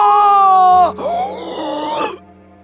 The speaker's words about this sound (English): you hear like faint screams from …